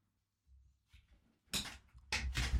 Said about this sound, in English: You can hear my squeak. I did not end up buying a new chair, guys. Oh, I'm so sorry. I was going to.